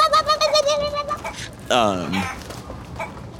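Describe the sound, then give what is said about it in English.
A person imitates a chicken darting through students' feet: a quick run of nasal, high clucks followed by a louder, drawn-out squawk that slides downward in pitch, then a few softer clucks. “Chicken is darting through feet, going...”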